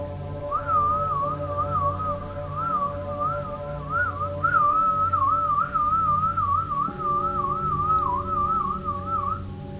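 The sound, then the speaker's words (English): A person whistles a single long, sustained note that wavers up and down through several different tones almost continuously for about nine seconds, steady in loudness, over a low droning hum underneath. “I want the whistling to be something like sustained.”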